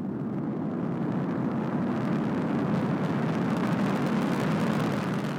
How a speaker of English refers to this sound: Ignition sequence start. 6, 5, 4, 3, 2, 1, 0, all engine running. Liftoff.